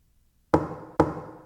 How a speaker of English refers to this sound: Oh God, I can't think of a noise I hate more than that persistent knock. Please go away. Just leave me alone and let me be.